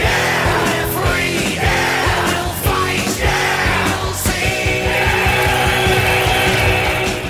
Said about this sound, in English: The crowd cheering comes back again there, that sample.